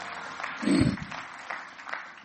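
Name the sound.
audience clapping hands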